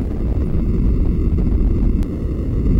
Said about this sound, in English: Those are shock waves in the flash lamps that fired up.